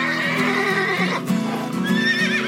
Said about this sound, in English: Two domestic palominos fight each other to decide.